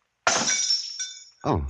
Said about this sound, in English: Oh, I'm sorry. I must have knocked the glass out of your hand. Although I didn't touch it. Did I? I'm sorry. That was clumsy of me.